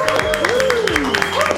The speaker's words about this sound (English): And can we please, everybody in the studio, have a big round of applause